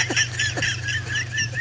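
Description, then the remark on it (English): A flock of geese honking in a rapid, overlapping chorus of nasal calls, fairly loud and continuous, over a low steady background hum. “What does that have to do with the frickin' geese?”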